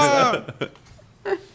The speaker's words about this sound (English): Bless you.